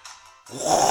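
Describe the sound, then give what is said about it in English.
A soft breathy intake, then a sudden loud, rough rasp from the throat as someone clears it, gravelly and sustained to the end. No talking. “Oh, got to clear your throat somewhere, haven't you?”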